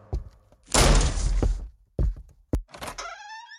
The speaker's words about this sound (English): Can you try not to slam the door so much?